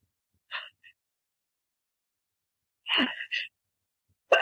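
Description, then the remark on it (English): A short, sharp sneeze bursts out after a couple of faint breathy sounds, with quiet pauses between them and another abrupt noise right at the end. “Excuse me. Bless you.”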